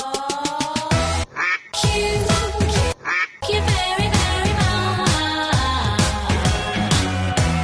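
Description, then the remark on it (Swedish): Loud, dense music with repeated duck quacks woven through it, short nasal bursts in quick rhythmic clusters, with two brief gaps where a lone quack sounds before the music resumes. “Vi ska gå vidare och vi har en kvackjur den här veckan.”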